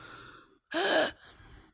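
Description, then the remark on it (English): A voice imitates a woman's labored gasp: one loud, raspy, breathy intake lasting under half a second, bracketed by quieter breathy noise before and after. “And she's doing the gasp.”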